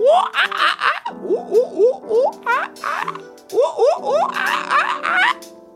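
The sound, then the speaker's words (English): Several voices pretend to be a silly monkey, making playful monkey noises: a rapid run of rising, squeaky hoots and chatters with giggly bursts, repeating in quick rhythmic pulses for several seconds. “Next, let's pretend to be a silly monkey. Make some monkey noises with me.”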